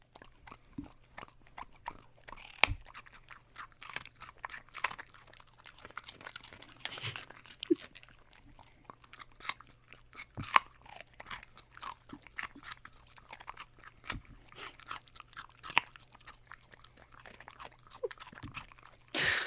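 A dog crunches and chews raw carrots, with sharp, irregular snaps and wet chewing over about twenty seconds, a few louder cracks standing out against a faint steady hum.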